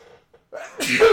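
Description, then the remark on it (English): A single sharp sneeze: a short intake of breath, then a loud, explosive burst of noise that fades quickly. “Bless you.”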